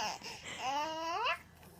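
An 18-month-old toddler girl babbles in a home video, letting out one drawn-out, sing-song vocal sound that rises in pitch at the end, with faint room noise around it and no other talking.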